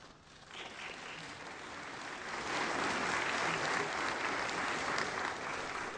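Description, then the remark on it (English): An audience breaks into sustained applause, a dense crackle of many hands clapping that swells louder after the first couple of seconds and holds steady to the end. “That certainly does deserve an applause.”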